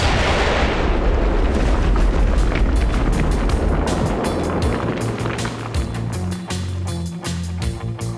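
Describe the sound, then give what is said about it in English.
A stack of pallets of the drug gutter glitter explodes behind a drug lord in a loud, sustained blast that roars for several seconds, then gives way to sharp crackling bursts and a low, rumbling drone. No one speaks. “Adios, muchacho, said Dax, as a stack of pallets behind Chico Juarez erupted, ripping Chico Juarez to pieces.”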